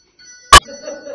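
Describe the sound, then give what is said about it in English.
A phone rings with one short, loud electronic chirp over faint steady high tones, then quiet murmuring voices follow. “Who, are you ringing?”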